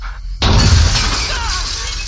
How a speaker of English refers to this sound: raises his hands as the back window blows out. The birdshot grazes his ear, his cheek, leaving streaks of blood.